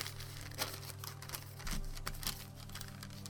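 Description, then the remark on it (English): A pencil scratches and rubs across a notebook page in quick, uneven strokes, fairly quiet, over a low steady background hum with no voices. “Hey, is the next page of that notebook blank? Yeah, why? Just give it here, and hand me that pencil.”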